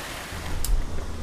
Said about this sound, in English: Can you describe where we are right now? Yeah, we're at a Rensselaer County Wastewater Treatment Plant.